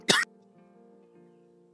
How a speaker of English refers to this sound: Sorry, I'm coughing.